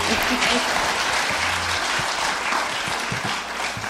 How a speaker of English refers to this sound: Y'all can clap. It's okay. Yeah.